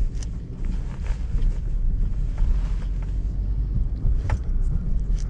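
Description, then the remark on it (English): Steady low rumble of a moving car heard from inside on a drive home from work, recorded Thursday, April 10, 2014: a constant engine and road drone with a faint airy hiss on top and occasional brief rattles, no voices. “I'm recording today in the car on my drive home from work, so I apologize for the recording quality.”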